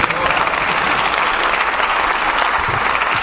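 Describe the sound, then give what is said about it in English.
Loud, steady audience applause fills the whole stretch, a dense wash of many hands clapping at once without any clear rhythm or pause, for the speakers who came before that night. “And then, my brothers, let's give a round of applause to my brothers who've come before us tonight.”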